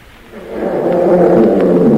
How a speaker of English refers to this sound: As he entered the jungle, he came upon a lion. And an elephant.